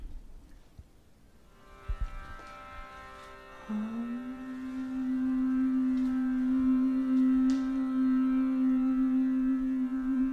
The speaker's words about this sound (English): We're going to do a little bit more humming with this sound.